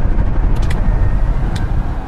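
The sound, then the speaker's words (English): Steady low rumble of road and engine noise inside a moving car, constant and enveloping, with a few brief faint higher ticks or squeaks; no one speaks. “I need to get out of this car.”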